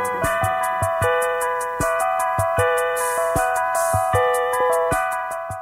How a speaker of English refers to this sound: It is. Bells or something, but all the presets were on that one little Casio. I still use the Casio now.